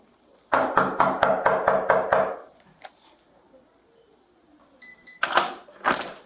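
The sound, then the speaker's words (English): Police officers knock on a front door: seven or eight hard, quick knocks in a steady rhythm, followed by quiet, a short electronic beep and a couple of brief rustling bursts. “We'll join back where officers are knocking on the front door.”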